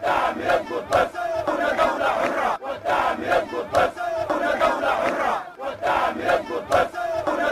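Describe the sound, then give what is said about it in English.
A large crowd of demonstrators at a sit-in near army headquarters sings a revolution song together in a loud, sustained chorus, the rising and falling melody carried over a dense roar of many people, with a few sharp bursts cutting through. “As demonstrators sang a revolution song, they were stopped by gunfire which rent the air on streets close to the army headquarters.”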